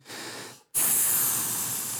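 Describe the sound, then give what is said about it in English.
A voice makes a hissing snake imitation in two bursts: a softer breathy hiss, a brief pause, then a louder, sharper sustained hiss that slowly fades. “Snake.”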